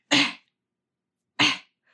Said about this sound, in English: Don't mock my coughing.